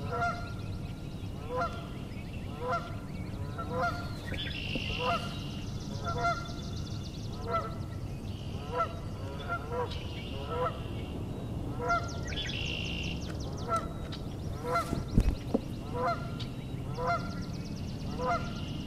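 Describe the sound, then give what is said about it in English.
Geese honk over and over in a steady, rolling rhythm for the whole stretch, with some higher bird chatter mixed in and a low outdoor rumble underneath. “Mute geese.”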